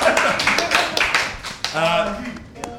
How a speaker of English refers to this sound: a round of applause